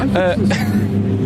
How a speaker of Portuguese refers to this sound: E um carro da polícia a parar aqui, mesmo gueto. Estamos mesmo no sítio certo. Temos boa polícia a pé, por acaso. Temos boa. Temos 4 carros de polícia, pelo menos. 5, 6, 7. 7 carros de polícia, oh meu Deus.